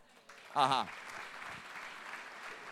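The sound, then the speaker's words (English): An audience breaks into steady, sustained applause, a dense wash of many hands clapping, with a brief voice or shout cutting through near the start. “It's worth clapping that.”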